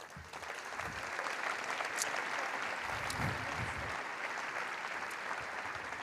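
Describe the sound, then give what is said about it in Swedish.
Sustained audience applause at a Christian conference, a dense steady wash of many hands clapping at an even loudness for several seconds, with a few faint voices mixed underneath. “Och Kim också, som får en applåd för det.”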